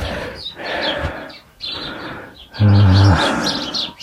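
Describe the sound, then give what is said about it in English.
Sparrows at a bird feeder, perched on a glass bowl a few feet away, chirp in short, bright bursts scattered over a busy, rustling outdoor background, with a brief low droning hum cutting in partway through. “Hello, there's a sparrow already. Well, they're already on the glass bowl, even though it's only a few feet away from me.”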